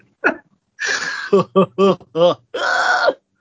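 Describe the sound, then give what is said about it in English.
A person imitates Goofy's cartoon laugh: a sharp breathy gasp, a quick run of four or five voiced laugh bursts, then a long, strained wheezing breath to finish, all fairly loud. “It is like the weird breathing. That is that, yeah. At the end of his laughs.”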